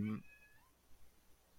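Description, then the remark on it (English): A cat lets out one short meow right at the start, a brief bright cry that trails off quickly. “Hi, Cat.”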